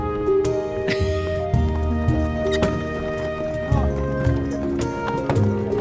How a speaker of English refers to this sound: Horsey cart.